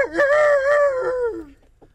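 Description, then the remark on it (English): A rooster crows once on a radio PSA announcement, a loud, sustained harmonic call of about a second and a half that drops in pitch as it trails off, followed by a few faint clicks. “Folks, you're listening to the Chattahoochee Folk Hour, and that was not me crowing. I just want to say it was the rooster on the PSA announcement, in case there's any doubt in anyone's mind.”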